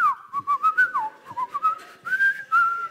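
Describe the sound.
A person whistles a short, bouncy jingle melody from the Quality Street chocolate advert, clear, with quick notes rising and falling in a catchy advert-style tune and no talking.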